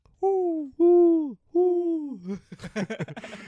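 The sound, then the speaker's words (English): An owl gives three long hoots sliding downward in pitch, evenly spaced and fairly loud, followed by a quick burst of babbling, giggly chatter. “Is there an owl in here?”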